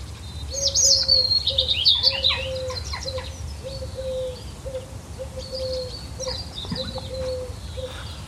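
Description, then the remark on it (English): On a sunny day in the countryside, birds sing and chirp in bright, overlapping bursts above a steady low rural background, with a repeating soft cooing call underneath; no one speaks. “Ah, it's a peaceful sunny day in the country. Can you hear the birds?”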